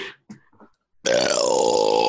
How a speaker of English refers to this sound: Belch. That was a belch. Nice job. That was great.